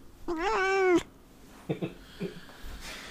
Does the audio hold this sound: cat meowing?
yes